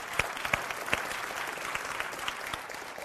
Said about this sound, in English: All right, let's just give another clap for the choir.